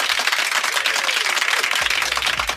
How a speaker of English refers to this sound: Unnecessary applause.